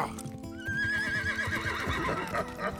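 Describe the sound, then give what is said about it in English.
A horse lets out a loud, wavering whinny that rises and trails off as its rider mounts and begins riding away, set against a busy, rumbling background with faint hoof-like thuds. “Once he shoved enough into the saddlebags, he mounted his horse and began riding away.”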